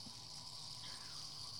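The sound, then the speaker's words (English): Wine pours steadily through an aerator, a continuous airy hiss and gush of liquid that holds even for the whole moment, fairly quiet, with no voices. “That's the aerator that we're using to pour the wine.”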